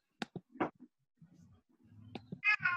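A cat named Scabby, just walking in, meows twice in quick succession near the end, fairly loud, after a few short knocks and soft rustling.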